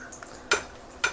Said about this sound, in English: We're going to take one out of the frying pan and into the fire, or just onto the plate. Yeah, probably onto the plate would be better.